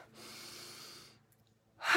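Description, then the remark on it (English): A long, slow inhale of breath fills the first second, then a pause, followed by the start of a forceful exhale during a guided breathing exercise. Breathy, with no talking. “Let's do one more breath in, breathing in”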